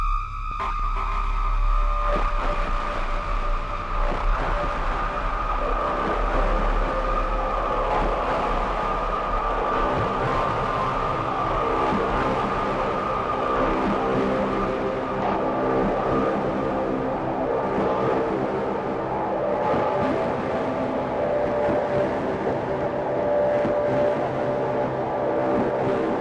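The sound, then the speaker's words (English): Dense, droning modular synthesizer texture of four filters in bandpass mode (the Wasp, the Angle Grinder, the SVF and the Ericasense DIY Multimode VCF), with sustained resonant tones and shifting narrow peaks over a hissy, steady wash, loud and continuous with no voices. “So I'm using all four filters, the Wasp, the Angle Grinder, the SVF, and the Ericasense DIY Multimode VCF.”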